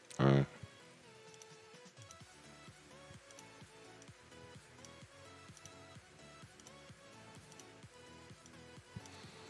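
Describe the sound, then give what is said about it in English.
A washing machine runs noisily, its drum producing a steady, rapid series of mechanical knocks and clicks with a low hum underneath, after a brief loud bump at the start. “This person's washing machine makes too much noise.”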